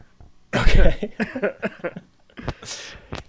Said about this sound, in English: I feel another cough going.